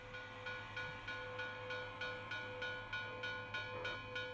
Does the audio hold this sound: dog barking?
no